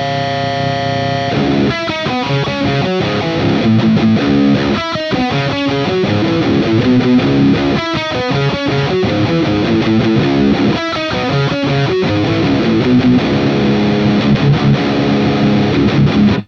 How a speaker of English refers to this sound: Dynamic, traditional, valvey. Here's the Neural DSP preset for big riffs. I can't believe these tones are from the same suite.